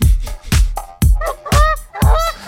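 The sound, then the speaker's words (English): A female goose honks loudly, letting out about five harsh, nasal calls in quick succession with brief gaps between them, and no voices present. “She's still a goose.”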